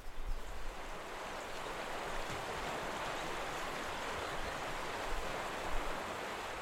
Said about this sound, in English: Tonight, this will be my campsite, as I plan to have a campfire and be lulled to sleep by the rushing river.